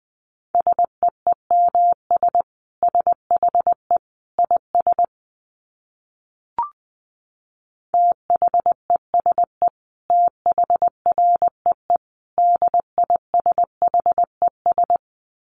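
Morse code keyed at about 20 words per minute: a single steady mid-pitched tone pulsing in quick dots and dashes, broken midway by a short pause and a faint click, with no voices.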